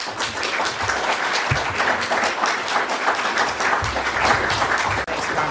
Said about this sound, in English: Thank you very much, Congressman. Please give him one more round of applause.